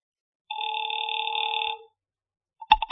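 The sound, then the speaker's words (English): A single steady ring tone sounds over a telephone line for just over a second as a call is placed to Pacific Seaboard Fidelity, then stops. After a brief silence, a sharp click and clatter follow as the receiver is picked up. “Mallard left, and I took the slip of paper he had given me with Ayers' phone number on it, sat down by Amici's pet aversion, and doodled with the dial.”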